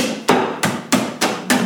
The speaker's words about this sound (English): always come with a canvas bag and a mallet for you to crush it up into the crushed ice that you liked. So that's what I'm going to do right now. I have my ice in a canvas bag. I'm going to move away from the microphone here. He's got a little hammer.